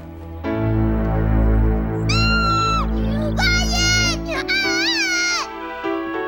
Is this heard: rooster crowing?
no